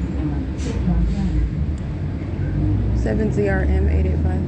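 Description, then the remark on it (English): A rental truck rumbles by on the street, its deep engine drone steady throughout, with a voice speaking briefly over the traffic noise near the end. “truck rental crossing path.”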